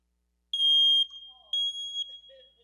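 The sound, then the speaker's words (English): A smoke detector sounds two loud, shrill electronic beeps, each about half a second long and spaced a second apart, followed by faint low background noise. “Chirp, chirp. It's like my dad calling turkey.”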